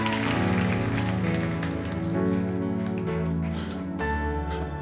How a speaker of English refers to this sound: I hope you're clapping